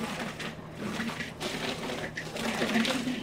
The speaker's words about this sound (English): All right, so this sherbet recipe has two ingredients. This mango here. We're going to add 1 cup of vanilla Greek yogurt. And then a little bit of water. Okay, we'll blend this up.